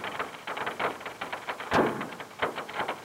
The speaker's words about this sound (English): So this is this is magma flowing in the subsurface. It's breaking the rock and it's flowing through. So the magma's cracking, the rock is cracking open. You're literally fracturing rock in the subsurface to break through on your way to the surface,